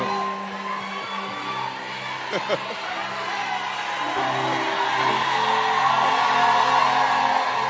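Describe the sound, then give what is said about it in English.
A large audience at Oyibi Cathedral cheers and whoops continuously, a dense wash of voices with scattered shouts and calls that swells slightly louder toward the end. “We will be shouting for you also.”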